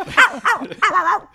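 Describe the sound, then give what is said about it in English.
A voice imitates a chihuahua's bark: three quick, high-pitched yapping barks in a rapid cluster, loud, with no other talking. “The third head has a chihuahua bark.”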